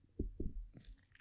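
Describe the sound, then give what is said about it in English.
A muffled, low burp right up against the microphone, breaking into two or three short, throaty gulping pulses before trailing off. It's quiet overall, with no talking. “Excuse me, I just burped into the microphone.”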